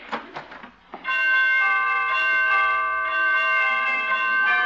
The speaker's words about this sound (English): Well, pretty door chimes.